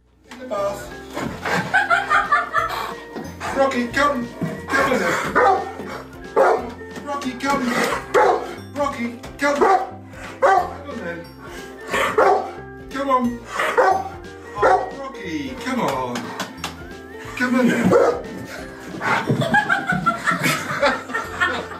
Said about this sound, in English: And it's a little puppy named Rocky. Now let's see how he reacts when he is asked to go somewhere he doesn't want to go.